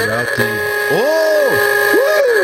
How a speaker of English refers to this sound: Eddie, the engine emailer, is in the house, and he's already blew the Ooga horn for getting into that email bag.